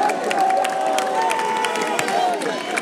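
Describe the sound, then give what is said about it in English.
A basketball crowd cheers loudly and continuously for about three seconds after a three-pointer from the corner, a dense roar of many voices with scattered high shouts and a few whistle-like tones riding on top. “The crowd getting loud now as number 2 the ball.”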